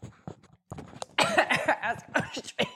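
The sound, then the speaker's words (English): A female puppy hacks and coughs in a rapid string of short, rough bursts, fairly loud, with a few quieter coughs before the fit picks up. “She's fine. She just got a little coughing fit.”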